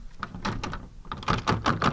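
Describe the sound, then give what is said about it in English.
A locked door is tried and rattled, with a quick series of loud, uneven clattering jolts over about two seconds, with no one speaking. “Who locked these doors?”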